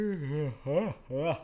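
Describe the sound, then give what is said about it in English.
A person yawns out loud, a drawn-out voiced groan broken into three wavering swells that rise and fall in pitch, with short pauses between them and no other talking. “Y'all like that yawn?”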